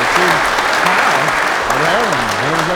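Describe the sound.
A steady round of applause, dense and loud throughout, with a voice talking faintly underneath the clapping.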